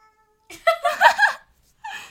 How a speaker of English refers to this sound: That do be a cat, though.